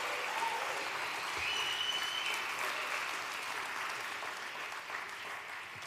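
Sustained audience applause, a dense steady wash of many hands clapping at fairly even loudness for about six seconds, with a faint whistle cutting through partway.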